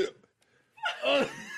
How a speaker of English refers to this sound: I'm burping now. I can't breathe. Hiccups. I can't breathe. I can't stop.